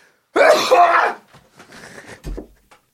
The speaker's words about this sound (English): I fell hard while I did an overdramatic sneeze.